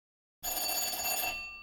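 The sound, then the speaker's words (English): A shop bell rings out after a moment of silence, a bright, metallic, sustained jangle with shimmering high overtones that holds steady and then begins to fade. “Jess had rung the bell again.”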